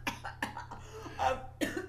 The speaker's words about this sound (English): If it's, oh my God, that made me cough.